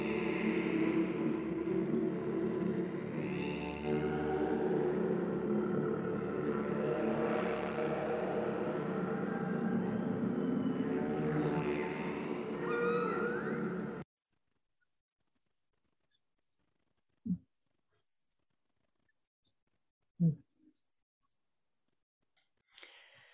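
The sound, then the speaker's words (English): Whale song fills the first fourteen seconds: loud, layered moans and slow rising and falling tones over a dense low rumble. It then cuts off into quiet broken by a few brief knocks. “Just feeling the energy from hearing the whale sounds.”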